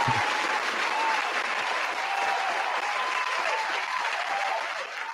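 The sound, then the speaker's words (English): Sustained applause from many hands, a dense, steady wash of clapping that stays loud and even for the whole stretch with no pause or talking. “Okay, that clap is kind of long.”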